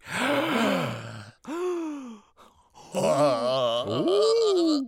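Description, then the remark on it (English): Voices mimic a rippling series of gasps and groaning exclamations, loud, in several swelling bursts separated by a short pause, imitating an audience gasping in a wave from front to back. “Gasps are heard in the audience like a wave from front to back.”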